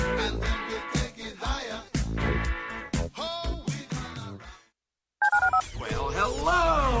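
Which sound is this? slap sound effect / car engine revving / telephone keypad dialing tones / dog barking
telephone keypad dialing tones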